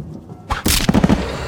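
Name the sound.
thunder crack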